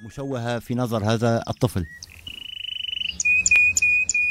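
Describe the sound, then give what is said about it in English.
After a couple of seconds of voice-like sounds, a frog gives a quick, steadily pulsing trill, followed by bright, high chirping calls, all clear. “Like animal sounds, like sheep, like birds, frogs, dogs, chicken, and everything. Animal sounds.”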